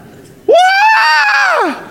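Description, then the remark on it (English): A voice mimics a newborn baby's cry with one loud, drawn-out "wah" wail that rises sharply, holds a high, strained pitch for over a second, then slides down and stops. “What does a newborn baby sound like? It's a squall.”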